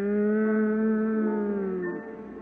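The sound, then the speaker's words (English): An audience hums a hymn together in sustained, steady low tones that hold one pitch, then slide downward and soften near the end. No words are spoken. “While they're humming it, is there one here left would say, Lord, you see me as I stand.”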